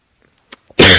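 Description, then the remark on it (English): A single loud, harsh cough, demonstrating the cough used at a Vipassana meditation retreat, bursts out after a near-silent stretch with a couple of faint breathy sounds. No one speaks. “By the way, that's the Vipassana cough.”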